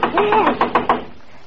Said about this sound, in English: we see Della herself excitedly knocking on the door in a notorious criminal hangout in New York's Lower East Side.